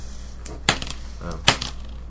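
Dice clatter across a hard surface in a few sharp, bright rattling bursts, with a quieter tumble in between, heard alone without talk.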